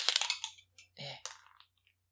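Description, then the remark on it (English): Dice clatter across a hard surface in a quick run of sharp clicks, followed by a few separate knocks and a brief rattle as they settle, clear; the roll comes up a natural 20. “That's a nat 20. Is this dice loaded?”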